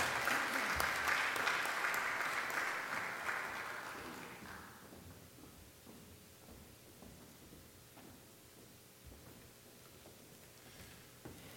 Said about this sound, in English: Let's have another round of applause for our flight recipients.